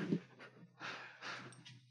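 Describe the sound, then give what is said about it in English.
A guest dog fitted with its own microphone pants in quick, breathy bursts close to the microphone, a few rhythmic huffs of air with short pauses between them, with no talking over it. “Yeah, we've got a guest dog as well. We've got the dog mic'd up, guest too.”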